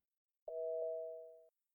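A phone rings with a single short electronic tone, two steady pitched notes chiming in quick succession and fading after about a second, heard alone in silence.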